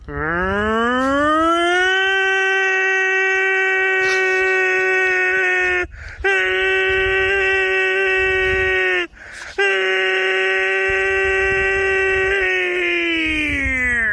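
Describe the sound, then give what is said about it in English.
A voice imitates a tornado warning siren: a loud, sustained wail that rises at the start, holds steady with two brief breaks for breath, then tapers off near the end. “I'm going to do a tornado siren once again.”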